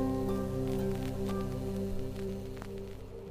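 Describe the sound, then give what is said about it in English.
Steady rain from a storm patters over a low, sustained droning hum, with scattered sharper drops ticking through. No one speaks; the wash of rain stays fairly even, easing slightly toward the end. “Above our valley, the skies roil and tumult with the storms left as the bequest of the days before exclusion.”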